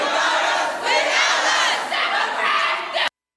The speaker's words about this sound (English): So the protesters around her, the crowd, they start chanting.